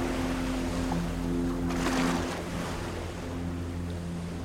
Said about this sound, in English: The long boats sail into the night. Farewell.